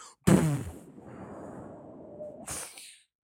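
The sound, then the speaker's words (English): A sudden, loud explosion-like burst, apparently a voice imitating a blast, trails into a long rumbling hiss before a second short noisy burst fades away. “What if it fucking exploded? Just full-on miniature nuclear explosion.”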